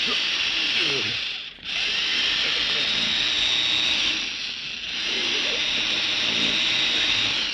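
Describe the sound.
A power drill grinds steadily with a loud, high-pitched whine, boring into a vault, that briefly eases twice before resuming at full force. Faint voices murmur beneath it.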